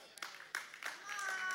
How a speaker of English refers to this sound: They're clapping and you're not, and I know why, because you've been indoctrinated and inculcated to think that somehow we don't belong there.